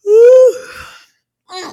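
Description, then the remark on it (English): A loud yawn from a tired person: a drawn-out voiced moan that trails off into a breathy exhale, then after a brief pause a short, softer sighing breath. No one speaks. “As y'all can hear this yawn coming in.”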